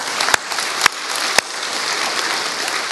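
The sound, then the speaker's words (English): An audience claps together, a steady, dense wash of applause lasting throughout, with a few sharp, louder individual claps popping out in the first second and a half. “We can clap for that.”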